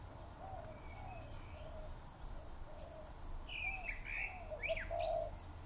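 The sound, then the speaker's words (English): A southern boobook owl in a tree outside the front of a house gives soft, repeated two-note hoots, while other birds chirp and tweet more sharply over a low outdoor rumble. No one speaks. “I'll tell you the story about the Southern Bookbook Owl.”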